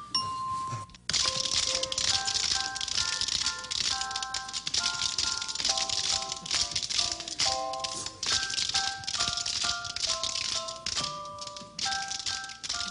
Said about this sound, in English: And that, incidentally, that sounds exactly like you think it's going to be a bunch of kids playing spoons in a hostage situation.